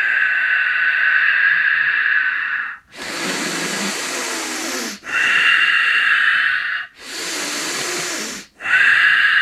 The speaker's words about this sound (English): You really want to focus on this long, deep, slow breath, but try intensifying the breath. So like a sharp inhale, hold the breath for a moment, and then a sharp exhale.